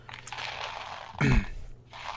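Tiny candies poured out of a box, a dry, hissing rattle of many small pieces that swells into a louder, crunchy burst partway through before trailing off. No talking.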